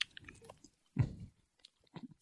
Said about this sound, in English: That's a condom. That's definitely a condom, an unsheathed condom in my mouth. I'm definitely chewing a condom. It's leaving chunks in places.